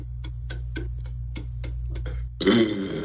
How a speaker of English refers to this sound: I'm holding my breath. It's good burp. I'm doing it. Good.